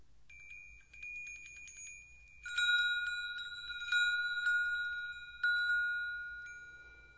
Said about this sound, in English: Hear the sound of soft tinkling bells. Notice how the sound moves through the air, touches your ears.